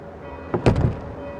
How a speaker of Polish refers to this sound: Proszę księdza, dlaczego ksiądz mi zamknął drzwi przed nosem?